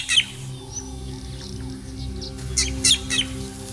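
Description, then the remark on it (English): A bird gives sharp, piercing false alarm calls to meerkats: one brief burst at the start, then a quick cluster of three or four shrill notes near the end, over a low, steady background rumble. “He sounds another warning.”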